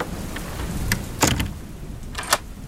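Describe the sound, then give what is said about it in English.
A rainstorm outside a keeper's cottage hisses steadily with a deep low rumble underneath, broken by a few brief sharp bursts of sound. No one speaks. “Then, as for the rest of you, you can wait out this storm from inside the keeper's cottage.”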